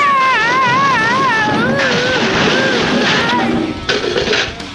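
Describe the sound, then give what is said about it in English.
A black cat caterwauls loudly while being chased through a thrift store, a wavering, warbling yowl sliding up and down in pitch over constant clattering commotion as clothing racks fly, with a sharp crash-like burst near the end. “Hank busts into the thrift store chasing a black cat”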